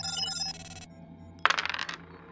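Polyhedral dice hit a hard surface with a sharp clack, then rattle and tumble in a quick, decaying burst of clicks. Before that, a bright ringing tone fades out.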